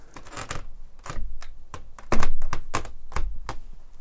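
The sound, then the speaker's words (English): A window is being shut: a run of about ten sharp thunks and clicks in irregular succession, with a heavier knock near the middle. “I'm going to close the door. Not the door, the window.”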